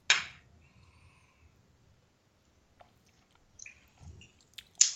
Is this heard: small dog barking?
no